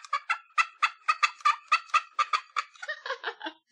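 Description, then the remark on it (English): A turkey call instrument sounds a rapid, rattling gobble, a quick run of bright throaty pulses that tumbles and drops in pitch at the end, loud with no talking. “Or here's another version of the turkey call.”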